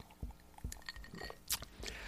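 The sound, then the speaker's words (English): Someone drinks water from a glass: soft wet sips and swallowing gulps in a quiet stretch, with one bright clink of glass partway through and no talking. “I'm drinking water because I had a little bit of a cold, as you know, and I got a scratchy throat.”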